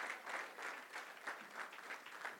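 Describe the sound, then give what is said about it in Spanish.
An audience breaks into sustained applause for the Lord, a dense wash of many hands clapping with a loosely pulsing rhythm, steady and fairly loud throughout with no voices rising above it. “Le un aplauso al Señor.”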